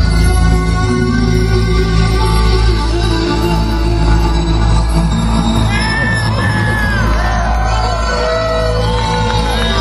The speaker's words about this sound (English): The sounds you hear now is from his keyboard.